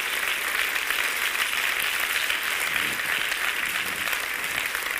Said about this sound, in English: Clap your hands if you believe me today.